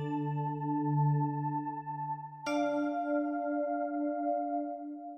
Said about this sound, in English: You can tell when the scenes begin and end because of our cool chime noises.